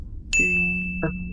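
A single bright bell ding rings out clearly and sustains with a steady, shimmering tone, joined briefly by a second softer chime before the end, with no voices.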